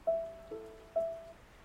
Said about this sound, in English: I can only hear the rain.